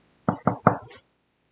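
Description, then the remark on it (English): Three firm knocks on a bedroom door in quick, even succession, clear, followed by a brief faint rustle before silence. “you get a knock at your door.”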